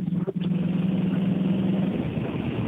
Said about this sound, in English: He's on a lawnmower.